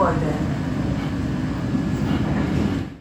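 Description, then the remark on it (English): A steady, loud low rumble of a moving passenger train heard from inside the carriage, holding constant for a few seconds with a faint voice in the background. “I'm going to be catching a train, and then when I hop off the train”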